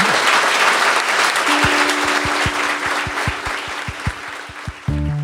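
Loud, sustained applause from an audience for the guest at the close of a startup event for the show What It Takes, a dense wash of clapping that fills the whole stretch, with a low musical tone and rhythmic bass pulses coming in partway through beneath it.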